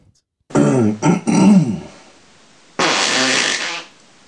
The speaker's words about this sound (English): This is number one on my list. Is called Brilliant Fart